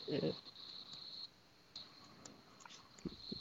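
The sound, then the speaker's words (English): A person imitates a steady, high-pitched cricket chirping trill throughout, with brief brighter pulses. Short bursts of voice break in at the start and again near the end. “Is that crickets?”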